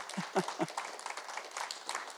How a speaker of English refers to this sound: Let's give him a clap today. Let's give him a clap today.